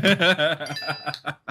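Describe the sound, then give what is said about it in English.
A bright, high-pitched phone notification ding rings out briefly, its clear tone holding for a moment before fading, heard after some chuckling voices and under continuing talk. “It's the ding. That's my notification sound.”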